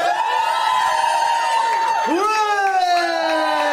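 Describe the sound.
An audience cheers and whoops loudly and steadily, many voices blending into sustained shouts that swoop down and back up midway through, lasting nearly four seconds.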